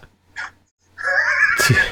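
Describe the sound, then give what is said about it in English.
A voice imitates a wheezing gasp for breath: a short breathy catch, a pause, then a long strained whistling inhale that ends in a rough, raspy burst, fairly loud. “While he's, like, gasping for it.”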